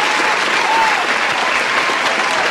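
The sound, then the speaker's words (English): A crowd applauds steadily, a dense wash of many hands clapping at once with no pauses, loud throughout. “I think everything that I do, people are applauding.”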